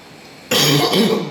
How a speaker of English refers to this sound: I know, but now like it hits my throat and I instantly cough.